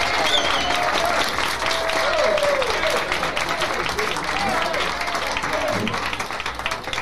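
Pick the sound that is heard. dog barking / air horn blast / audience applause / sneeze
audience applause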